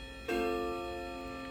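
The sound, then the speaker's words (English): A clock chime strikes once at 7 o'clock, a clear metallic bell tone that rings out and hangs in the air, slowly fading with a rich, sustained resonance. No voices are heard. “Yeah, I'm gonna have to wait for the clock. Y'all hold up, because it's gonna gong.”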